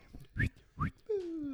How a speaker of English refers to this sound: See how when I whistle, I like.